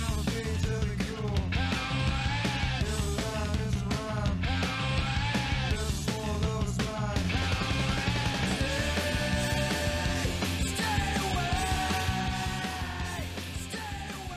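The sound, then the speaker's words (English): A loud grunge rock song plays: strained, shouted vocals ride over thick distorted guitars and pounding drums at a steady, dense volume, easing slightly near the end. “my biggest thing was that it just hit the repeat offender notes, and yeah, we could listen to a little bit of it.”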